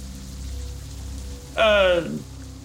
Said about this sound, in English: No, it's just, you know, pretty rainy out.